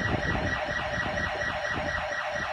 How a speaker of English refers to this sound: I was finally shaving after 3 months. But the house alarm is going off, so. Oh.